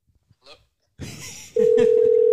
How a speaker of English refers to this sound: Don't call it. Hold on. It's ringing. It's your dumb phone.